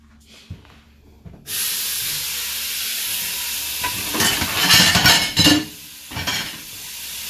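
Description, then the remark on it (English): A faucet starts running after a quiet moment, a steady hiss of water into a sink, with a few louder splashes and clattering bursts as a person washes dishes underneath. “But in the midst of me talking to y'all, I'm gonna be washing dishes. So if you hear noise, that's why.”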